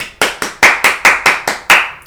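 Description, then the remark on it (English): A short burst of clapping, a round of applause for a second COVID vaccine: about eight sharp, loud hand claps in a quick, even rhythm, each with a bright slap that fades fast, with no voices over it. “All right, another round of applause for my second COVID vaccine.”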